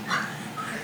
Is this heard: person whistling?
no